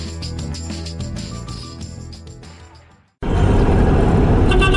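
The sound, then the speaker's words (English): Music fades out, then after a brief silence a loud, steady wash of car traffic noise bursts in, with a horn toot and no voices. “We're the people in the car ahead of you in traffic.”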